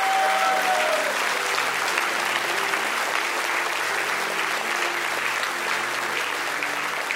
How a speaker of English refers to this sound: Come on, give God one more hand clap of praise.